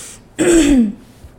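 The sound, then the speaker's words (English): A single throat clearing, fairly loud, lasting about half a second with a gravelly, voiced rasp, then quiet. “let me clear my throat.”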